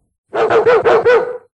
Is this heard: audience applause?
no